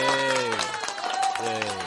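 A short burst of hand clapping, a quick run of sharp claps mixed with a sustained, wavering vocal sound that doesn't form words.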